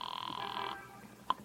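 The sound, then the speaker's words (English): A telephone rings with a steady, buzzing trill for under a second, then falls quiet before a sharp click like a receiver or dial, as someone uses a phone to make a call. No voices are heard. “Don't mind if I use your phone, citizen.”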